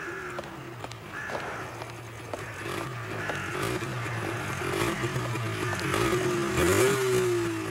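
A motorcycle engine drones steadily in a street, growing louder and climbing in pitch as it approaches a woman from behind, then roars past near the end. Scattered harsh, rasping noises are mixed in; the rider throws a firecracker behind her feet.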